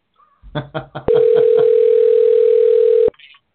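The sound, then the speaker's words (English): A telephone ringback tone sounds once as a steady, loud two-second hum during an outgoing call. A voice talks briefly just before it and murmurs faintly underneath. “We're making a phone call.”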